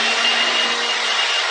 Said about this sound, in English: Gotta blow out the goat song, because it's been raining, so now all they do is keep in here, and it's gross. But goat poop can be blown out with a blower.